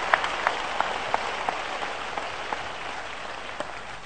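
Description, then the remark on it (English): A crowd claps for Jesus in a dense, steady wash of applause, with a few sharper individual claps standing out near the start and thinning slightly toward the end. No one speaks over it. “Clap your hands for applaudissez Jesus.”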